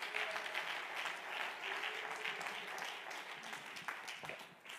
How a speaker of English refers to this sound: Oh, somebody clap your hands and praise the Lord this morning.